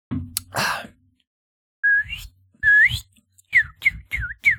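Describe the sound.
Someone whistles an imitation of a cardinal's call, clear: two rising slurred notes followed by a quick run of four short down-slurred chirps, preceded by a burst of breathy noise.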